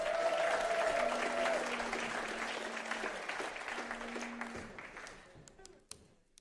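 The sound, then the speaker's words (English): An audience bursts into loud, dense applause for the South Africans present, with a few sustained cheers over it, holding steady for several seconds before thinning out to a handful of scattered claps. “Let's give all the South Africans a hand in the building this morning.”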